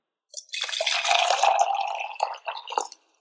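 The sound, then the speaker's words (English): Water, either hot or cold, is poured into a cup as the first of two pours in a hot-or-cold listening test, a steady splashing stream lasting a couple of seconds, with a few gurgling bursts as it finishes. No one speaks. “and then pour a cup of hot water into a cup, and in another cup, pour a cup of cold water.”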